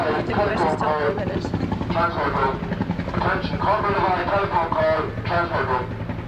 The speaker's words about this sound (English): You will soon get used to helicopters, and you will never want to see or hear a helicopter by the time you get home.